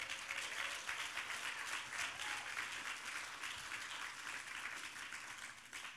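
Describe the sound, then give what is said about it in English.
A church audience at a baptism service applauds and cheers steadily for several seconds for leaders of the Gippsland campus, a dense, even wash of clapping that holds a constant loudness throughout, with no voices standing out. “Let's give these guys a big cheer.”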